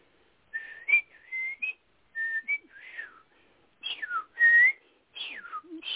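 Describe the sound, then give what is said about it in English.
A person whistles an imitation of the song of a Eurasian blackbird heard in Weymouth, England: a string of short, clear, warbling phrases, two measures the bird repeated, sliding up and down in pitch, separated by brief pauses, with no talking. “This is one of the blackbirds I heard, the Euro blackbird, in Weymouth, England, and it did this.”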